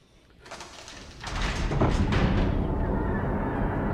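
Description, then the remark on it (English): A heavy palace door with great steel bolts grinds open with harsh scraping and clanking over a couple of seconds, then settles into a steady low rumble. It is loud, with no voices. “Finally, a door with great steel bolts stands before them.”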